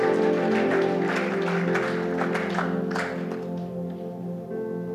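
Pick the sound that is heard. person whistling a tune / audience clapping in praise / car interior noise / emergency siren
audience clapping in praise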